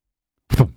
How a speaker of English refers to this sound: Like the old fucking AIM chat fucking door closing.